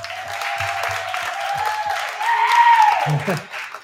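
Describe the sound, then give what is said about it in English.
An audience applauds for student athletes and their parents: a dense, steady wash of clapping that holds for several seconds, with a long sustained cheer-like tone rising above it before the applause thins out at the end. “Yeah, clap it up.”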